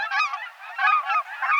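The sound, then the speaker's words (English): A steady chorus of high-pitched cackling goose honks, many birds calling over one another in quick, overlapping yelps, fairly loud and continuous with no talking. “Look and listen for pint-sized cackling geese this fall at refuges, in farm fields, and at other spots where migratory geese gather.”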